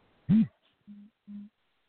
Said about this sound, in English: I think somebody's feedback was talking to me. Turn your mics down or turn your phones down.